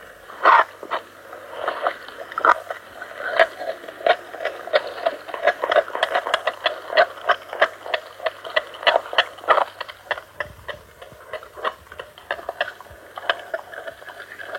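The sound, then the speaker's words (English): A wolf gnawing meat from a bone: a steady stream of sharp crunches, clicks and wet tearing sounds in an uneven, rapid rhythm, moderately loud throughout with no voices. “Like chisels, just chewing those muscles off the bone.”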